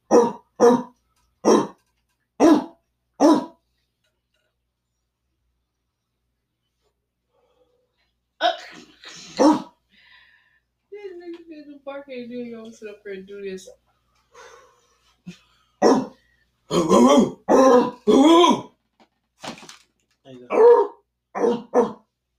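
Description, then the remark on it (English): People imitate dog barks: a quick run of five short, sharp barks, a pause, a drawn-out whining call, then a denser burst of overlapping barks from several voices. “I think I want you to start the bark off.”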